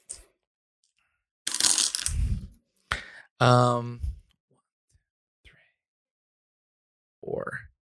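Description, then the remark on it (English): A burst of dice rattling and clattering across a surface in a tabletop role-playing game, rolled for the character Ruby to beat four successes, followed by a sharp click, then short vocal sounds and a brief murmur of voice near the end. “She has a little bit more of a dice pull than him.”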